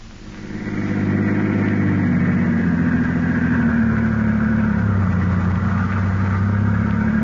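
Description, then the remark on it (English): A car engine hums steadily at a constant pace, a low continuous drone with a slight rise at the start as the car gets under way on the West Side Highway, fairly loud with no talking. “The two men are now driving in Garrett's car with Peters, alias Harry Gordon, at the wheel.”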